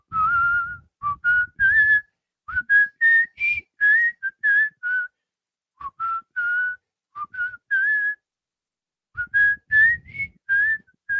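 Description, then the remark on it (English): A man whistles a tune, clear bright notes rising and falling in short phrases separated by brief pauses, with soft breathy rumble underneath and no talking. “Oh, he's gonna whistle it for you.”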